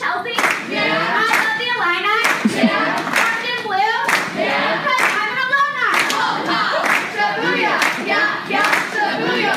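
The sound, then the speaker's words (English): Scattered, uneven hand clapping from a small audience, sharp irregular claps that never build into real applause, with voices talking steadily over them throughout. “Look at the people barely clapping.”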